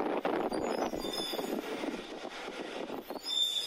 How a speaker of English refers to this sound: Anyways, take a listen to this. This is real. This is me following a whale / garbage truck through my neighborhood, going down the hills, and it starts doing whale songs to me.